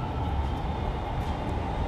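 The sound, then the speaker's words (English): A steady, loud rumble of a southbound train running along railway tracks, a continuous low-frequency roar with faint metallic hiss above, with no voices. “I gotta catch the train. This going south, so I need to go north to go to the Wheel Estate.”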